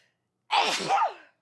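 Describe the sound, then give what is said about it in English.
A single loud sneeze caused by allergies bursts out sharply and trails off in under a second, with silence before and after. “Leave all these sneezes in.”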